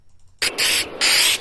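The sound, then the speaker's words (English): An aerosol spray paint can hisses in three quick, loud bursts as someone spray-paints words: a short spritz, then two longer sprays with brief pauses between them. No voices are heard. “Bart is put to the test of spray painting Springfield sucks”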